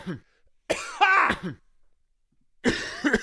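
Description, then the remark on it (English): Two raspy bursts of coughing and throat clearing, separated by about a second of silence, each a rough, harsh hack with no talking around them. “Guy, I haven't coughed in a week.”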